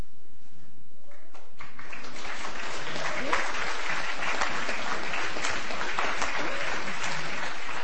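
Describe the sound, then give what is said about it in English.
Steady applause from an audience, dense and continuous for several seconds, starting after a brief moment of quiet and holding at a moderate, even loudness. “So we clap, clap, clap.”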